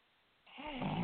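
A single loud, rasping snore rises after a brief moment of quiet, a rough nasal rumble drawn in over about half a second.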